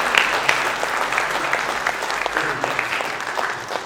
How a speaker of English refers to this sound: we're going to clap until you get up here, so you might as well.